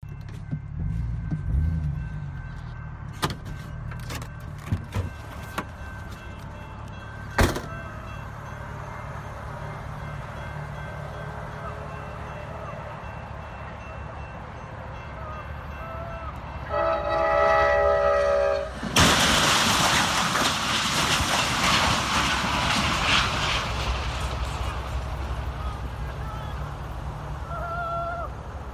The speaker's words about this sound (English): What the fuck is that? No, that was apparently the truck. You can stop it now.